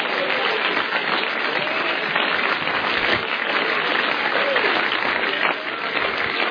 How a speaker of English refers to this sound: I'll give the Lord a hand clap. You know that's right.